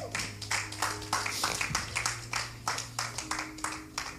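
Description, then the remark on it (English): An audience, on its feet, claps for Jesus in a steady, rhythmic beat, many hands striking together about three times a second, over a sustained low musical drone. “Let us be on our feet. Clap your hands for Jesus.”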